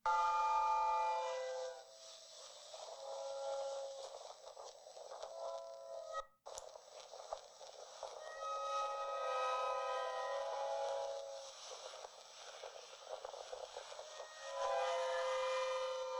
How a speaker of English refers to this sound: But this one is really, really, really tall. So this is the Blackpool High Tide Organ.